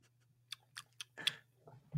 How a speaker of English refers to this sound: I think you should leave in all of the leave in all of this and all of the chewing of the cuties.